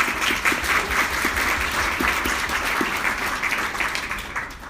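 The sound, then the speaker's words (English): A crowd applauds two speakers after their talks, steadily, a dense wash of many hands clapping at an even, sustained level throughout, with no voices on top. “Please give them another big round of applause, please.”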